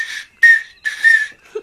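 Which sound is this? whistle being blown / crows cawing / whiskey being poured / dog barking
whistle being blown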